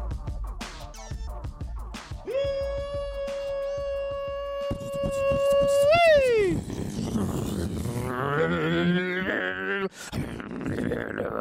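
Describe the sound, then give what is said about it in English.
A voice imitates a monster truck engine: a steady, buzzing mid-pitched drone held for several seconds, then a sharp upward rev that drops away, followed by rougher growling, sputtering vocal noises. “You sound like an angry monster engine.”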